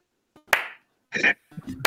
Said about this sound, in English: Got the slow clap for him.